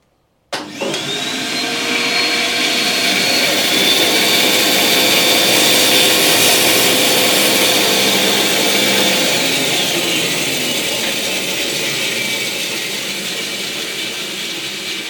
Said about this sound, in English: My little jig when I'm making pens. It cuts my blanks down to exactly the size I need for the tubes. Great little addition to my workshop.